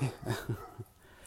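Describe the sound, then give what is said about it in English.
A little dog lets out four quick, high-pitched yappy barks in an uneven burst, moderately loud, with no one talking, as it is being taken back to its owners. “I'm taking this little dog back to its owners.”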